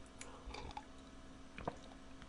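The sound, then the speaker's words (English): Quiet sipping of hot tea: a few short wet slurps and small swallowing sounds scattered over a couple of seconds, with no one talking. “I'm going to take a little sip of tea.”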